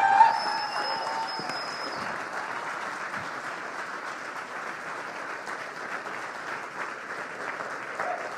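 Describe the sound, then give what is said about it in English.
A crowd applauds steadily for several seconds as Pastor Chano Trevino is welcomed, a dense, even wash of clapping at moderate loudness, with a brief tonal whistle-like sound near the start and no talking over it. “So could we just give him a round of applause as he welcomes Pastor Chano Trevino.”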